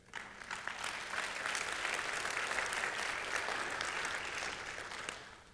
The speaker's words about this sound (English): We had nearly 20 folks go on that trip, and on this trip, and this ought to get a round of applause, we had 9 salvations happen on that trip.